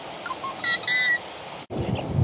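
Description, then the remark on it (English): A yellow-headed blackbird gives a harsh, buzzy, strained call in two quick bursts over a steady outdoor hiss, followed by a rumble of wind or handling noise. “We're looking at a yellow-headed blackbird.”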